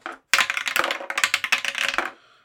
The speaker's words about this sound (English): Grab dice. Let's roll.